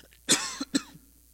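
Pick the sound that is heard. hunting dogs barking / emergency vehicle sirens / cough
cough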